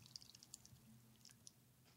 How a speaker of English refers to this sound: So this one's in a can. This is Cocos Pure Power Your Passion. Ooh. Now, I will say... Did you capture the dribbling sound that it makes as you pour it?